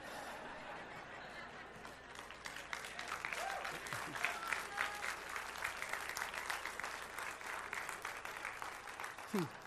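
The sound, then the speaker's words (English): A large audience claps steadily for several seconds, a dense wash of applause with a few scattered chuckles and voices mixed in, swelling slightly midway before easing off. “Don't clap.”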